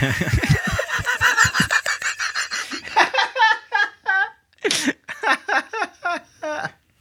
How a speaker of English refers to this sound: He just sniffs the mic mm-hmm. the entire time. There it is.